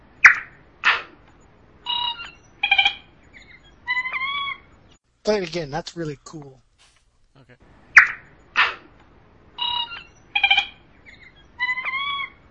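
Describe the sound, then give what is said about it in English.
Rich Little imitates a woodpecker call with a run of sharp, high whistled chirps and trills, a fluttering warble midway, then repeats the same sequence, with brief speech between the calls. “This is actually not a bird. This is Rich Little. And he's making a bird.”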